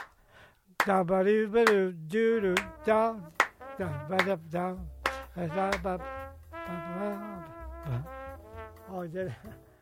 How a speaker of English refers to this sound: we don't have any music for it, but I'm going to like just take a rhythm. Let me do the clap. I'll do the clap part, and you do the, I can do the clap.